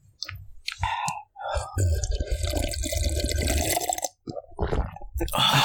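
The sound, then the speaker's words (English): Close-up sounds of drinking water: wet sips, swallows and clicky mouth noises, loud and right against the microphone, running for several seconds with a couple of brief pauses. “Drink some water. Let's get some ASMR.”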